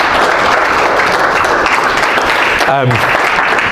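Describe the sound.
A crowd breaks into sustained, loud applause, dense clapping filling the whole stretch at a steady level, with a brief voice or cheer rising through it near the end.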